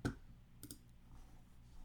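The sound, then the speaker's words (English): A sharp computer mouse click sounds at the start, followed a moment later by a quick pair of lighter keyboard clicks, as someone goes to the waterbed Wikipedia page, with no talking. “Dude, I'm sorry for all the clicking and typing sound effects, but...”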